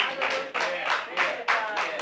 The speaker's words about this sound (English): If there's no place else in this message, in this word, that you clap, you need to clap at this point that God still loves you.